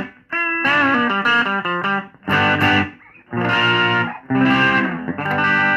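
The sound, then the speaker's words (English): A distorted Gibson Baldwin Signature Les Paul electric guitar plays loud, thick chords and short riffs, with strong harmonics and brief pauses between phrases, alone without any voices. “So, what we got here is my Gibson Baldwin Signature Les Paul.”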